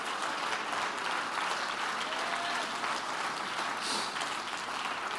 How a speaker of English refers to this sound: Go ahead and clap your hands and praise him.